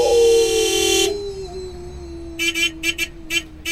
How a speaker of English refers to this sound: Mike, please stop honking.